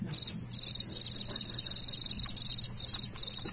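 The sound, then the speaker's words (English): A cricket chirps steadily in rapid, pulsing trills, broken into bursts by brief pauses. The high-pitched sound is clear over a faint low background hum, with no voices. “I think that's Cricket laughing.”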